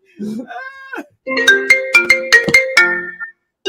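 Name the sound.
phone ringtone ringing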